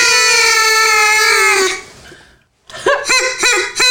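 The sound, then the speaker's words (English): A person imitates a duck: one long, nasal, buzzy honk that fades out, a brief silence, then four quick quacks in a bouncy rhythm, all fairly loud. “If you like ducks, we hope you enjoyed that noise.”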